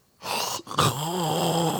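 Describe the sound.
A person imitates loud snoring: a harsh, rasping inhale, a brief pause, then a long, throaty snore-like groan, prominent with no other sounds.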